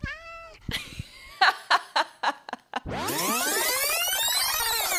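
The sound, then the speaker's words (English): A cat named Tom meows: a short meow, then several quick chirping calls, and finally a loud, drawn-out yowl that carries through to the end. “Tom, meow. Say, let's kick it, Tom.”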